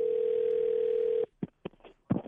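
A steady, humming telephone dial tone holds for over a second, then cuts off into a few short, separate beeps of keypad dialing. No one speaks.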